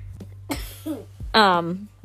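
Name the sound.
child coughing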